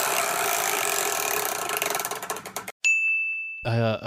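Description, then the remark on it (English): A large old chore wheel, spun to pick a chore, spins with a rush of rapid clicks that slow and space out as it winds down, followed by a bright ding ringing out as it stops. “that huge old chore wheel that's sitting behind you, would you mind spinning that for us?”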